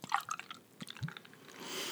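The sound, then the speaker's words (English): Kick-Axe Pale Ale from the Driftless Brewing Company of Soldiers Grove, Wisconsin, pours into a glass, a brief burst of gurgling and splashing followed by a soft, rising fizzy hiss as the foam builds. No one speaks. “So if you're ready, I'll pour you a little.”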